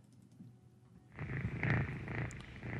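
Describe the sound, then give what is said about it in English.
A steady rumbling purr of a cat, starting faintly and growing louder after about a second, with a continuous low vibrating texture and no talking. “That's good. That's good, kitty.”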